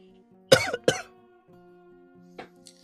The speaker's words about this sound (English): You're taking too much vape. I know it's easy to cough on the clouds.